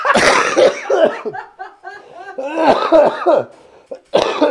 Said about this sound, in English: I can't even laugh hard, dude, because I can't even laugh without coughing.